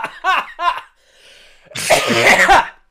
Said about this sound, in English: Yeah, that's a good cough.